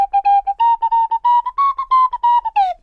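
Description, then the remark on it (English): A theme tune played on a slide whistle in short, bouncy detached notes, loud, the pitch edging upward before swooping down at the end. No one talks. “I have definitely done that on Swanny Whistle already, but I have officially run out of instruments.”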